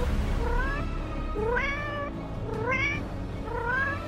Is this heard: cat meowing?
yes